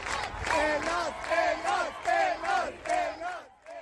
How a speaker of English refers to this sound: And when she returned to the country, she was greeted at the airport by crowds who came just to support what she had done.